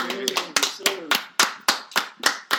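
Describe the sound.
Hands clap in a steady, fairly quick rhythm, around eight sharp claps, with a faint voice murmuring underneath at the start.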